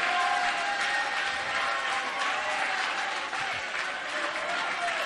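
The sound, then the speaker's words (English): A crowd claps steadily and loudly in worship of God, a dense wash of hand claps filling the space, with faint voices and a sustained tone running underneath throughout. “Let's clap our hands again and worship God with all of our might.”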